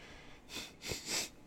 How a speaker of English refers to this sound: I might sneeze.